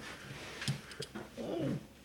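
A dog gives a couple of short, soft huffs, then a brief rising-and-falling whimper, fairly quiet, with no one talking.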